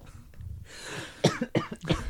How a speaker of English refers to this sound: Ladies and gentlemen, did you hear that? Did you hear how I coughed, but it wasn't blasting in your ears?